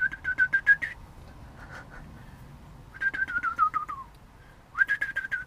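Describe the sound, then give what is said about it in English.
A person whistles an imitation of a rock-crested warbler in three bursts: a quick warbling trill, a long slide downward, then another fluttering trill. The whistling is fairly clear. “What bird are you trying to imitate? It's a rock-crested warbler.”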